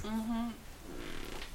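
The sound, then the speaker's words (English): A short, buzzy squeak of leather rubbing, sounding much like a fart, followed by a softer stretch of creaking and friction noise. “Can you hear that? The leather making fart noises?”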